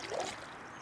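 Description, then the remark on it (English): A single soft paddle stroke from a boat swishes through the water of the Bronx River's freshwater section, passing the Bronx Zoo, followed by a steady, quiet wash of flowing river water, without any voices. “We're on the Bronx River. We're in the freshwater section, and right now we're passing by the Bronx Zoo bison exhibit.”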